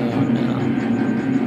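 A tram bound for Nest rolls along its rails with a steady, loud low rumble, overlaid by faint, regularly repeating metallic ticks. No one speaks.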